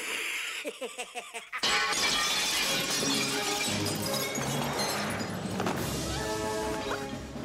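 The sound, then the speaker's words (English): A burst of shattering glass as Batman crashes down through the glass ceiling of a museum, after a brief lead-in of rhythmic clattering, followed by a sustained wash of loud crashing debris and tinkling shards with swelling orchestral music underneath. “when they're in the museum and he crashes in through the ceiling and whips out the line launcher”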